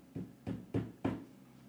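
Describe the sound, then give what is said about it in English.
Four evenly spaced knocks on a door, solid, each a dull thump with a short ring, the last slightly louder. No one speaks. “And you hear a knock at the door.”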